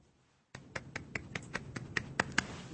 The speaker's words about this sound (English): Not quite crickets, but it was all those golf claps that you heard around the country.